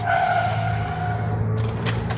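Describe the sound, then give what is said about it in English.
The KRAWLR bus drives over a huge debris field at One Pasta Place, its engine rumbling low and steady under a high, squealing whine, with a few rattling bumps near the end. Continuous, with no talking. “This vehicle is outstanding, son. And quiet, too.”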